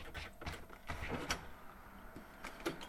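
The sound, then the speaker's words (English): A door is opened, with a few sharp clicks and rattles of the latch and hardware followed by a soft sweep of movement, all fairly quiet with no talking. “All right, opening the door.”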